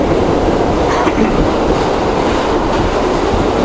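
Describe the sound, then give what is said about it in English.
A subway train in New York City rattles steadily along the tracks, a loud, continuous rumble and clatter, with no voices heard. “Preach on the subway.”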